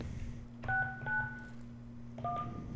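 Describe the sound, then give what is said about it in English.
Three short two-tone touch-tone beeps as a phone number is keyed in, spaced unevenly over a steady low electrical hum, with no talking. “No, we don't have redial. That's for rotary phones.”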